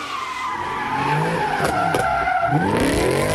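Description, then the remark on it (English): Muscle cars do donuts in the street right in front of City Hall in Philadelphia, with loud, sustained tire squeals, their pitch sweeping up and down over a growling engine roar, continuous for a few seconds with no talking. “Muscle cars doing donuts, a dangerous stunt.”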